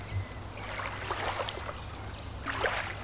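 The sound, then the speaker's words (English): Soft lake water laps and sloshes gently on the shore in an irregular rhythm, with a few faint bird chirps scattered above it and no voices. “Sometimes the vision is so loud that I can hear the waves gently lapping on the shore.”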